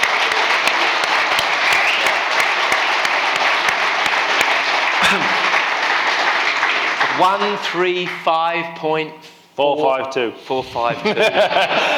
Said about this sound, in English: We're basically going to have a chat about, I think, another round of applause for the fastest ever road racer, Peter Hickman.